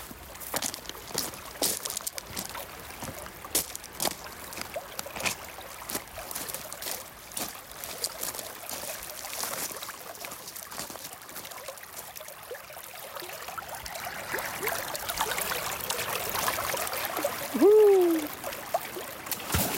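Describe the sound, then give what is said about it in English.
Water flows steadily at a natural swimming hole, a soft continuous rush that swells toward the end, dotted with scattered crunching steps and splashes and a brief high chirp near the close. “takes us on a journey to a swimming hole, from the path to it to the cool waters.”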